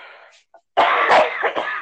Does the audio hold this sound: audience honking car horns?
no